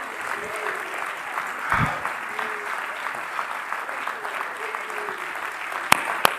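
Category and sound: crowd, audience clapping hands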